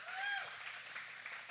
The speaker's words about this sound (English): give Christian a round of applause